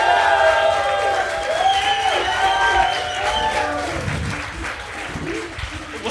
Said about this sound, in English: I'm not gonna lie, that was probably the best reaction. Like, I mean, people clap, but this was like, you had a little chant going there. This is perfect. Oh, that was cool.